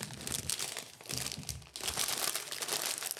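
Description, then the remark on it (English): A snack bag crinkles and crackles continuously as it is torn open, a dense, bright, papery rustling that shifts in bursts with a brief pause partway through. “Whenever I open one of these, it's going to go exploding.”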